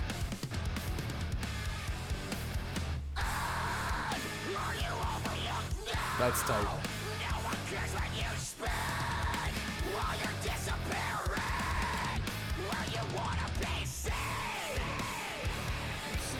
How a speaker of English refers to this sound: He does the best, like, just visceral scream.